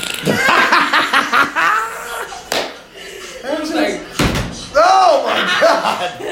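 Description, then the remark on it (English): A person vocally imitates a fart, a string of buzzy, wavering mouth noises broken by a couple of sharp, smacking pops, with laughing tones mixed in. “Or did it go like this?”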